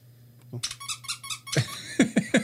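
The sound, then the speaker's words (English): A novelty Christmas jumper's squeak button is pressed, producing a quick run of high chirpy warbles followed by three sharp, rhythmic squeaks. “Are you going to press the button?”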